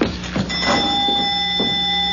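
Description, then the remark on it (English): A doorbell of an old, falling-apart house, the Sanford place, buzzes in one long, steady electric tone lasting about two seconds, with a few dull knocks and rustles under it. “The bell. The doorbell.”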